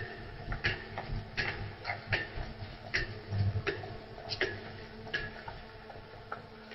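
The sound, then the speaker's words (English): A large town hall clock ticks steadily, with sharp regular clicks about every two-thirds of a second over a low rumbling background hum. No voices. “The clock on the town hall strikes”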